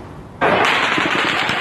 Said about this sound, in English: The gunfire lasted for what seemed like an eternity. People didn't know what to do, didn't even know if it was gunfire. We heard what we thought were fireworks, and it looked like smoke from Mandalay Bay.